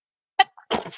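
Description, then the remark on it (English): A single sneeze, fairly loud, opens with a sharp voiced catch and bursts into a breathy, spraying exhale, with brief silence beforehand. “Bless you.”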